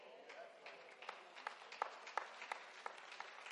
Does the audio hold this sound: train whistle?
no